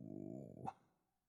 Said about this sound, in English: Crazy dog.